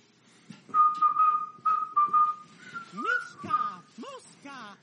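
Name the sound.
whistled theme song melody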